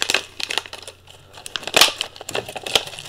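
Plastic packaging crinkles and crackles in irregular bursts, with a few sharper tearing rips as a plastic package holding scissors is pulled open. No voices, just the handling noise.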